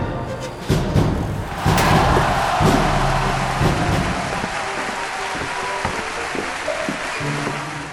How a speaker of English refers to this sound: Then, there is an uproarious applause as the castle gates open behind you.